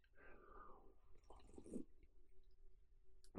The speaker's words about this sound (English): Sipping away on my coffee.